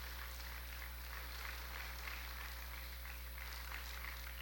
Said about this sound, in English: Purihin po ang ating Panginoon. Come on, give Him the best clap of praise to the Lord.